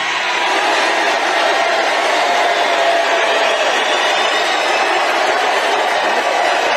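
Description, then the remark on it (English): Loud, sustained applause from a large crowd, a dense wash of clapping that holds steady for several seconds without any speech. “Sounds like a lot of applause there to me.”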